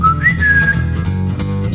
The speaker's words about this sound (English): For the past 3 hours now, my butthole still whistles when I walk.